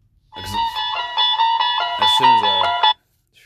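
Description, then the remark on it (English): A phone ringtone plays a loud, bright electronic melody of short stepping notes for a few seconds, then cuts off abruptly into silence. “My phone was ringing.”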